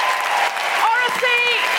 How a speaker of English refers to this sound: Big round of applause. Thank you.